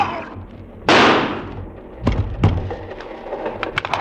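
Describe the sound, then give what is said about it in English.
A single loud, sharp gunshot cracks out in a train compartment and trails off in a long fading wash, followed by a few softer thumps and faint clattering knocks. “I raised the gun.”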